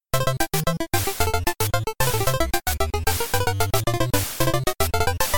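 Retro video game theme music from Duck Hunt: bright, buzzy chiptune notes in a quick, bouncy melody over a pulsing bass line, steady and fairly loud, with brief gaps between phrases and no voices.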